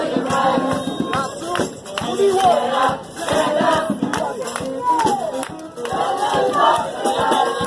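A large crowd sings together loudly outdoors, backed by steady live drum hits and a saxophone, the voices swelling into a continuous, energetic chant throughout.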